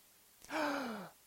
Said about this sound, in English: They take a breath. Great big breath in.